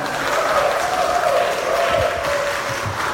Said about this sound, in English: I'll wait for the applause to cease.